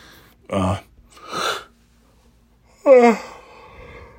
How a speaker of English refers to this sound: You want to yawn in the middle of a fucking podcast? That'll keep them coming back for more.